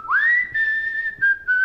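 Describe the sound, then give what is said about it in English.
A man whistles a short melody from a film: a note swoops upward and holds, then continues in a few brief, nearly level phrases with small breaks between them. No one speaks. “And then he whistles.”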